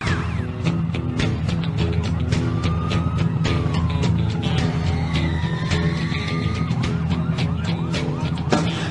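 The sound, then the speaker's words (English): Wailing sirens rise and fall over a dense, driving music track with steady percussion in a mid-1990s wrestling entrance theme song, the siren sweeps running through the whole nine seconds at a loud, upfront level. “They got the sirens.”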